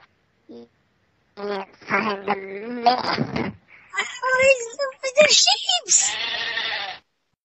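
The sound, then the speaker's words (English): Several loud sheep bleats follow one another over about seven seconds, each a wavering, nasal cry, with brief pauses between them and a long drawn-out bleat at the end. “All you had to do is look for the sheep.”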